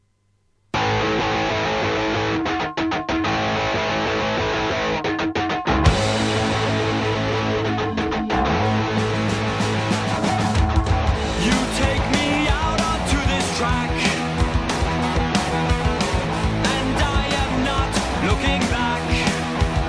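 A local band's song plays loud and continuous, a dense, distorted rock sound with steady drums. The mix brightens and fills out a few seconds in, then drives on without a break.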